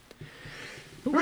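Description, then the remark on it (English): A single sneeze: a quiet breathy lead-in, then a sudden loud, sharp burst at the very end. “Sneezes are unacceptable on podcasts.”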